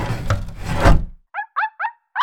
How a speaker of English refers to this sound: Let me get the window open.